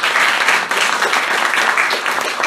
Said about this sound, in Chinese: 因为我没有跟你们的合照，所以我没有照片，那所以就借你们的手给他们一个很大的掌声。